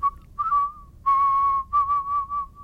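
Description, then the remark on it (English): A musical whistler whistles a short melodic phrase, clear, with pure sustained tones broken into several notes that glide slightly in pitch, a longer held note in the middle. “I am a whistler, a musical whistler.”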